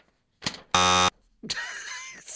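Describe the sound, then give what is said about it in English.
A single loud, flat buzzer blast with a harsh, steady electronic tone lasting about a third of a second, framed by short sharp thumps and a busy noisy clatter afterward. “I got three buzzes.”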